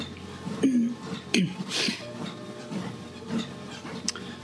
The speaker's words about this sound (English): Apologies for my sniffles, but that's a constant feature with me, my sinus problems.